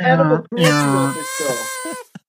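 Geese honking loudly, a short nasal honk followed by a longer, drawn-out wavering call and a brief final squawk, with no other sounds around them.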